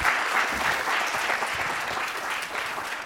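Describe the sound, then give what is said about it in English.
Steady applause from a crowd fills the whole stretch, a dense, even patter of many hands clapping at a constant, fairly loud level with no voices rising above it. “Give him a round of applause, you guys.”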